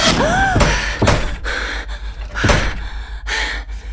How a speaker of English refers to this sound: The sound came from outside, like something was pounding on the guest house.